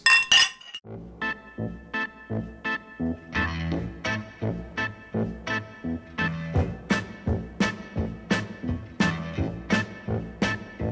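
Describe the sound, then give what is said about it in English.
Two or three bright glass clinks ring out as in a toast, then give way to a steady, rhythmic run of chiming, bell-like tones that continues to the end. “here's how we close out the podcast. Never drink and drive, but always... Drink and Geek. Cheers.”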